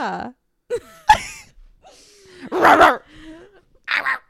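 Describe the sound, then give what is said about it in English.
A person imitates a barking dog with a handful of short, sharp vocal yelps spaced irregularly, the loudest bark landing near the middle, with breathy gasps between. “No, I want to bark at my man.”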